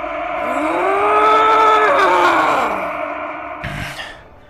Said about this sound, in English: And finally, all of that anger culminates into a roar of pure hatred.